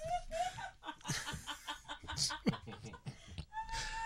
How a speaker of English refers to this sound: OMG, a chicken.